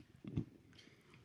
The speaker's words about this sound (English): Those crackers sound chewy. They are. They're protein. They are. Protein bar cracker.